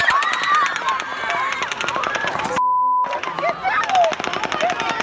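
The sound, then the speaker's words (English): Rapid, sustained bursts of automatic gunfire crackle nonstop during the mass shooting in Las Vegas, broken by a brief pause with a steady electronic tone, while panicked voices and shouting rise underneath. “And then we heard the gunshots kept on going on.”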